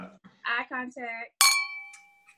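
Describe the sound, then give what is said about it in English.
Glasses clink once in a toast, a sharp bright chime whose high ringing tones fade over about a second, right after a short burst of voices. “Hey, quick before we say, hey, let's do a little quick toast to each other, man.”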